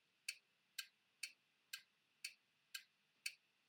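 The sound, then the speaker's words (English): A clock ticks steadily, seven crisp, evenly spaced ticks about twice per second, fairly quiet, with no voices or other sounds around them. “What's that one? Ticking.”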